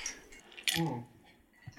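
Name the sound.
glasses clinking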